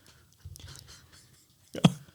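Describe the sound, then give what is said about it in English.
A low, murmured vocal sound gives way to one sharp, loud throat-clearing burst from a man near the end, a brief guttural rasp standing alone with no speech over it. “I love how he had to clear his throat.”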